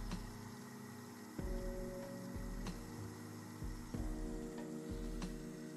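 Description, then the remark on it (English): An ozone generator makes ozone in water, giving a steady electrical hum with a rhythmic pulse or click about once a second and a faint fizzy hiss of bubbles and flowing water underneath, no talking. “you hear it making motions, you hear it chewing. What it just bezed. Megging ozone inside of some water”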